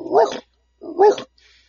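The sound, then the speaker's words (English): A person imitates a big dog barking by quickly breathing in while making a singing noise, producing two loud, gruff woofs about a second apart, followed by a faint breathy snort at the end. “First thing you want to be able to do is to kind of make a singing noise. But you want to do that backwards by breathing in. And you're going to do it really quickly at the same time trying to make a barking sound.”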